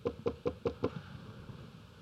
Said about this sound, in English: Jesus says, look, I stand at the door and knock. Jesus is knocking. He's knocking.